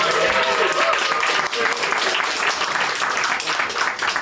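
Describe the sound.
A crowd breaks into sustained applause, a dense, steady roar of many hands clapping at once that stays loud for several seconds, with a few voices mixed faintly into the noise.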